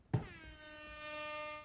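A single loud air horn blast, set off by pressing a button, starts abruptly and holds a steady, brassy, harmonically rich tone for over a second and a half, with no voices over it.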